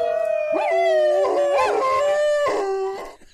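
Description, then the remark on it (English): Several dogs howl together in long, overlapping wavering tones, loud, with a few yipping breaks between the sustained howls and no talking. “But for a cat podcast, there's a lot of dogs out there.”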